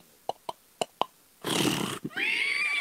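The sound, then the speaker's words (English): Four sharp clip-clop knocks, then a breathy snort and the start of a high, wavering horse whinny, fairly loud, as the horses are urged to start moving, with no talking. “All right, giddy up, horsey. And the horses began to go.”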